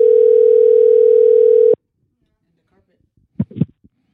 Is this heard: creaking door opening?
no